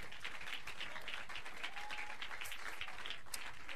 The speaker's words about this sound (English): Clap your hands and finish.